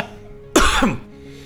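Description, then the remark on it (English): A single sharp cough, one loud burst with a brief raspy tail, given as a signal in a guessing game, with quiet background noise and no talking. “God, cough once if you're older, cough twice if you're younger.”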